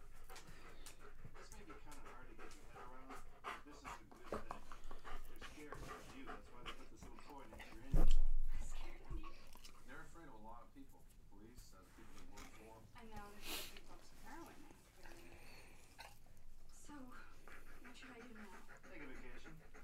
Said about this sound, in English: That dog breathes so heavy. He usually just lays in his little corner under the desk. He usually does. Goes and crawls under there and you don't even know he's in here. He's all hyped up. Right. He's all hot and bothered.